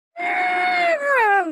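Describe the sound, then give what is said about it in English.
A man in a film's boat ride scene in a tunnel lets out one loud, terrified scream, held steady for about a second before it wavers and slides downward in pitch, then cuts off abruptly. “It's one of the most, the scream and the cutting of the chicken's heads off, the head off, is two of the most disturbing parts of that whole scene.”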